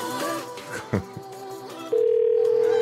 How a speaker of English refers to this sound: Hello? Sir, I think the phone got disconnected there.